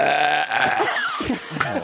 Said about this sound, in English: I can burp on command at any point. Do it. Burp now.